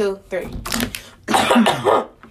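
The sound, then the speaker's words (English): A cough is muffled beneath loud, crackling crinkles of a plastic water bottle being squeezed to cover it, in two bursts of noisy rustling, with a brief vocal sound at the start. “Like, I'm going to make some noise with a water bottle so then you can cough.”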